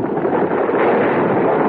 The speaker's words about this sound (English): I almost fell from the roof of the cave. I struggled to stay where I was, and my feet dislodged a shower of stones.